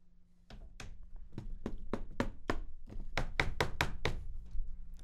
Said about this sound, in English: There's a bunch of wood in front of us. Get to knocking.